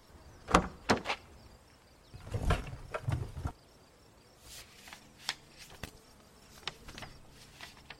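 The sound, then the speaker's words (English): A few sharp clicks of a car door being unlocked, then a heavier clunk and rustle as the door swings open so someone can get into the glove compartment, followed by scattered light taps and shuffling. “Seth unlocked the door for me and I went into the glove compartment.”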